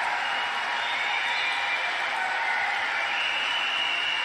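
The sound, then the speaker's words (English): A crowd applauds steadily during a Donald Trump speech, a dense wash of many hands clapping at once that holds at an even, moderate level for the whole stretch without a clear break. “I mean, this is basically, you know, it's Trump droning with occasional clapping.”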